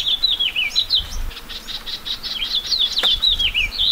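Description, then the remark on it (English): A house finch sings a bright, rambling warble of quick rising and falling notes, continuous, over a soft steady hiss of light April rain in the Anza Borrego Desert, southeast California. “The sweet, jumbled notes of a house finch rise above the sound of the rain.”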